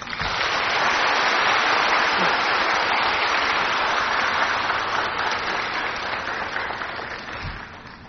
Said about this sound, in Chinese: 然后我们现在以热烈的掌声恭请师父为我们开示。